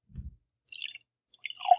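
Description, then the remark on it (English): Barton's bourbon gurgles as it's poured right next to a microphone, with a dull low thump first, then splashy bursts of liquid and a short run of bubbly glugs near the end. No one speaks. “Pour that next one right next to the microphone there.”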